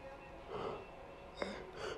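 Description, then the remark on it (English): A drawn-out, breathy yawn from a tired person late at night, with soft airy inhales and exhales and a brief catch in the middle; quiet, with no talking. “I'm sorry, I'm yawning.”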